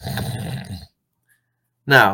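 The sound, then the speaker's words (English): A voice imitates nasal snoring, caused by turbulence where the back of the nose meets the throat: a buzzy, rattling snort through the nose, a second of silence, then the start of another snore. “And nasal snoring goes a little bit like this.”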